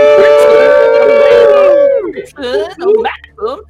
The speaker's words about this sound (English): You hear shouts, and no one here speaks over. And all kinds of barked commands and somebody howling in pain.